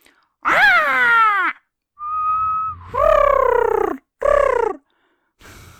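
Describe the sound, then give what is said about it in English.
A person's voice imitates a bird: a grating, drawn-out caw, then a short clear whistle, followed by a couple of harsh, rolling calls and a faint trailing note, fairly loud. “grating caw, as well as a clear whistle and a brief rolling series of harsh notes”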